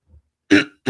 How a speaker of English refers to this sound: I just coughed right there on the air for everyone. Just a little throat clear